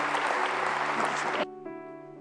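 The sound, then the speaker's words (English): An audience gives Jesus a hand clap as their pastor comes up, a dense, steady burst of applause that cuts off abruptly after about a second and a half, leaving sustained organ-like tones ringing on. “Give Jesus a hand clap as our pastor comes.”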